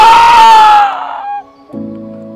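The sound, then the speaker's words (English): Several voices imitate a hawk's cry together while breathing out and lowering their arms as if flapping wings, a loud, shrill screech that slides slightly downward and trails off, followed by a lower, steadier vocal tone near the end. “And as you let your breath out, sound like a hawk and put your arms down like you're flapping your wings.”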